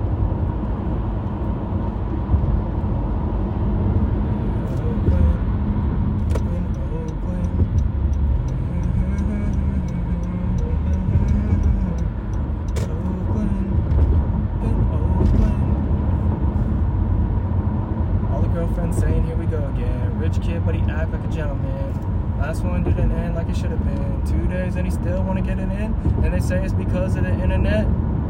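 traffic noise

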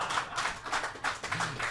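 audience clapping

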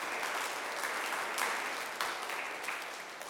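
children applauding

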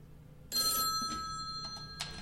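telephone ringing

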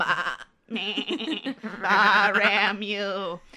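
goat bleating sound effect

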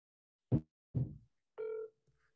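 phone call ringing

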